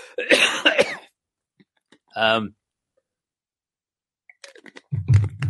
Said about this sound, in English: Hold on a sec while I clear my throat.